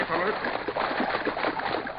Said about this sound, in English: They splashed through a ford, then on again.